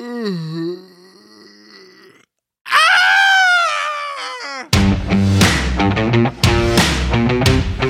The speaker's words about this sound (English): There's something beneath the ice! Ready yourselves! Starts as kind of a loud, yawning noise and turns into a scream.